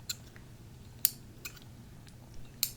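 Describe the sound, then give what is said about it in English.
Scissors make several crisp snips at an uneven pace as something is cut open, a few sharp cuts standing out over a faint low background hum, with no talking. “I love scissor sound.”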